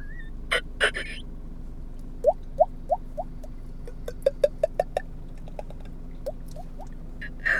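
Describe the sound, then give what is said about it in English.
A voice mimics a dripping faucet with a series of small, rising plinks, some spaced apart and some in quick clusters, fairly soft, with a few sharp clicks at the start and end. “That's a pretty good faucet drip.”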